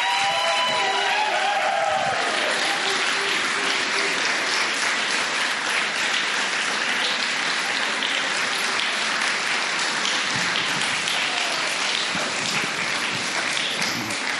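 Sustained audience applause fills the whole stretch, a dense steady clatter of many hands clapping, with a few brief voices or cheers audible near the start before the clapping continues evenly.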